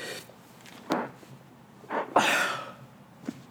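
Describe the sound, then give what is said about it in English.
A single sneeze: a short sharp intake of breath, then an explosive, breathy burst that trails off. It's moderately loud, with a few faint clicks and breaths around it and no talking. “Bless you.”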